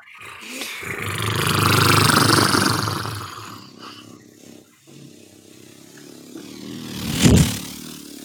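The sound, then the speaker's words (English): A car engine roars as it speeds past, revving hard in a loud swell that fades into a lower rumble, followed by a brief sharp burst of revving near the end. “Wow, that one's going fast. Yeah. He's got some car thieves on the go.”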